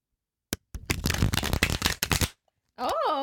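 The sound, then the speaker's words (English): A deck of tarot cards is shuffled: a sharp snap, then a rapid, crackling riffle lasting about a second and a half, followed by a brief voice after a pause. “Let's do like some shuffle ASMR.”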